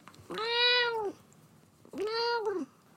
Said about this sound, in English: I'm not 100% certain, but I'm pretty sure that's cat talk for thanks for listening.